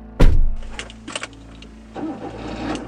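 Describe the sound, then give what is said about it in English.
A car door thuds shut, a low engine hum settles in with a few mechanical clicks, then the engine revs up as the car starts to pull away, heading off to Santa Barbara, fairly loud. “The next day, I got in my car and headed off to Santa Barbara to find Dolores Cantwont.”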